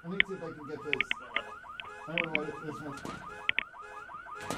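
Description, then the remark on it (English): A car alarm, set off by someone kicking the car's body, blares with its electronic tone sweeping upward over and over in a steady repeating cycle, with a few sharp clicks and thumps mixed in. “I got the alarm to go off.”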